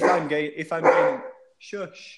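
The speaker's dog barks loudly: a long, drawn-out yelping burst, then a short pause and a second, briefer bark.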